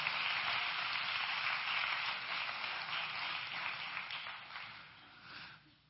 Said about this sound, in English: Please clap for Pastor Angela, somebody.